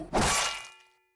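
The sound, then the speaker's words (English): A single heavy, dull blow from a guard who sneaks up from behind knocks someone unconscious, landing with a loud thwack, followed by a brief ringing tail that fades out quickly, with no voices. “You are knocked unconscious by the other guard, who snuck up behind you as you were focused on the first guard.”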